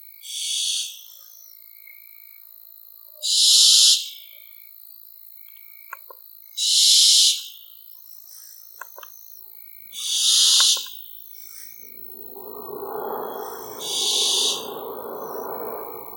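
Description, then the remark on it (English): A barn owl gives five harsh, hissing screeches spaced a few seconds apart, loud, over a faint steady insect drone, with a low rumbling noise rising near the end. “Well, its flight may be silent and without a flutter, but its call is rather screechy and can give you a fright when you're dreaming.”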